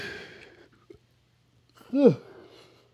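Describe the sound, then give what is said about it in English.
A person gives one loud, drawn-out yawn with a voiced rise and fall in pitch, after a breathy exhale and a short quiet pause. “Quit yawning.”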